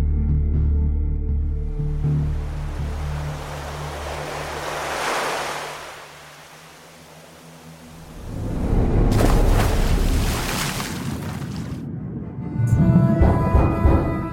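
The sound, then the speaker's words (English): Rumbling ocean sound design: a deep, churning wash swells and fades, then a loud roaring surge of water crashes in, ending with muffled low tones and resonant hums beneath the rush. “Just by the sound of the that like knocking or something kicking.”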